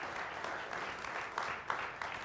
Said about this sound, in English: And so we celebrate here when we take an offering, and I'm going to invite our host team to come forward right now, and that's why we let out a roar, let out a cheer when we do that.